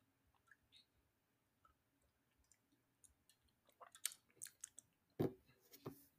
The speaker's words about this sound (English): So it says the club cocktails produced since 1892. Ooh. Distilled in Greendale. I assume IN must be like Indiana or something. I don't know. All right. We're going to take a sip. Let's see.